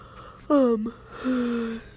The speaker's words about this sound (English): Excuse me, I yawned. I don't know why I said excuse me, but like, just telling you guys I yawned.